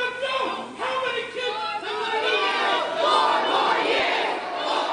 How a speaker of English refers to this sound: And then Joe Biden was talking and he was heckled by the pro-genocide, the anti-Semites in the crowd, and he claimed it's a MAGA woman.